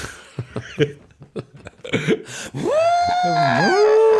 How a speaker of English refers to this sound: I'm just going to blow my nose.